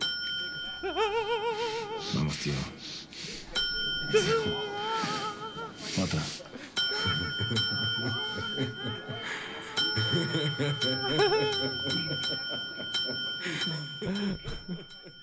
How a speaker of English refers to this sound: And we hear it. It brings back so many memories. It's amazing. We hear the bell. We hear the bell ring for the first time.